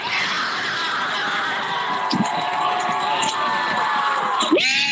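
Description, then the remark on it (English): A large crowd of 2020 Black Lives Matter protesters cheers and shouts around the Justice Center in downtown Portland, a steady, dense roar of overlapping voices, with a few sharper yells poking through and one rising whoop near the end. “There they merged with a crowd that had gathered around the Justice Center.”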